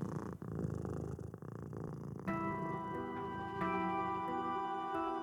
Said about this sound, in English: As she dozed off, she thought she heard a familiar purring sound deep in the recesses of the attic.